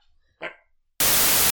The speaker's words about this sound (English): This dog's gonna make my editing so much more interesting.